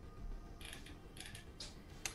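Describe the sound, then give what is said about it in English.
A door creaks open somewhere off in the distance, a faint series of short, stuttering creaks spread over a couple of seconds, with no voices. “Yep, you hear the sound of a door opening further on down here.”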